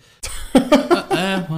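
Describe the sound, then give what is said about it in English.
A short burst of throaty coughing: a harsh rasp followed by three quick cough pulses, trailing into a drawn-out voiced rasp. “I couldn't hear you. I was coughing.”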